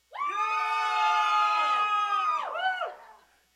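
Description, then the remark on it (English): A crowd of people yells as loud as they can for about three seconds, a dense, sustained, high-pitched roar of shouting that dips and swoops near the end before trailing off. “They yell as loud as they can, and I'm going to plug my ears, have at it.”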